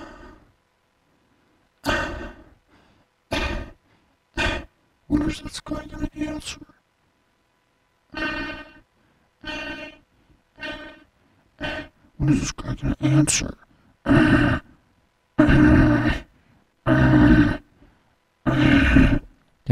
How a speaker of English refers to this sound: Some heavy breathing going on. I hope he's okay.